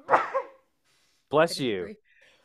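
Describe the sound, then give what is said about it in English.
Two loud, voiced sneeze bursts about a second apart, the second ending in a sharp, hissy blast of air, then quiet. “Bless you.”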